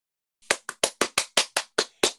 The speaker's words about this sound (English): Solo clapping. One person clapping. Woo! We should really get some effects for this podcast. If it's going to actually continue, because one person clapping sounds like crap.